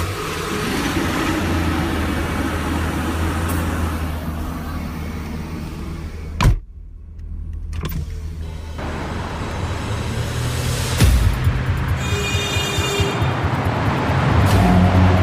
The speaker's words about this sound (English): Each day starts in the suburbs of Washington, D.C. Then I start my truck.